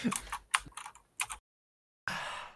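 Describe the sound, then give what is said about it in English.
Quick bursts of computer keyboard typing, a cluster of sharp clicks and taps in an irregular rhythm, then a brief silence before another short flurry of keystrokes. Clear. “I can hear your keyboard. That's because I'm typing and I'm talking to you.”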